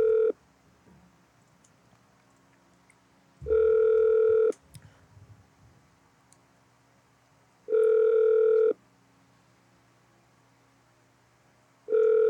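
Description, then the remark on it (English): A telephone ringback tone from a call to a PetSmart store repeats through a phone line, steady one-second electronic buzzes separated by roughly three seconds of quiet, clear and fairly loud, with no one speaking. “I'll try to get another PetSmart on the phone before the end of the evening.”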